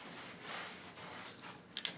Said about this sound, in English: So on a very sharp piece with a lot of straight lines, which I do a lot, I will use this for the whole piece and use spray. I'm not gonna actually, well, I can spray right along the side of it and get a super sharp.